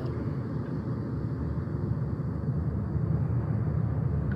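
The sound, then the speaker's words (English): Ocean waves at the beach form a steady, low rushing roar that holds an even level throughout, with no distinct individual breakers and no voices. “And as we sit here in silence, we hear the waves get louder.”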